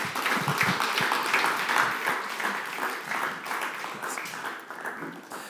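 Steady audience applause after a testimony, a dense wash of many hands clapping at a fairly loud, even level that tapers slightly toward the end, with no voices standing out.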